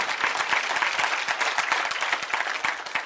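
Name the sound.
audience clapping hands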